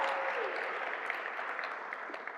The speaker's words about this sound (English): Come on, let's give Sarah a round of applause. That was brilliant.